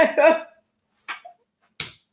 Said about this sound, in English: What am I doing? What part of my body am I slapping? Your knees. So it's a knee slapper.